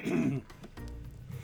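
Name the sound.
throat clearing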